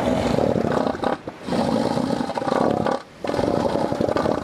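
A male elephant seal, using its inflatable proboscis, bellows in loud, rough, pulsing roars, three long bursts separated by brief pauses, harsh with a rattling, engine-like quality.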